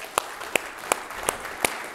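An audience at a morning church worship service applauds a man after his baptism. Steady, evenly spaced claps, about six sharp slaps in a regular rhythm, moderately loud over a faint background hum and with no talking.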